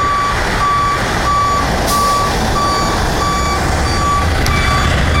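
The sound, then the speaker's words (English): A truck reverses, its backup alarm beeping steadily about nine times at an even pace over a loud, rumbling diesel engine. No one speaks. “I should go before this truck crushes my bicycle.”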